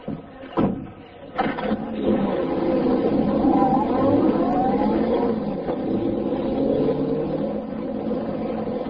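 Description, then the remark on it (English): Two quick clunks like a car door, then a convertible's engine rumbles to life and pulls away with a steady drone that holds through to the end. No one speaks. “Then he stepped into his convertible.”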